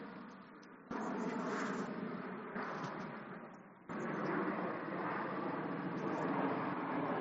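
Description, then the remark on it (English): A steady, rushing roar of an airplane passing overhead, broad and hissy like a blow dryer, holding loud throughout with a few sudden step-ups in volume and no talking. “let me pause for the plane.”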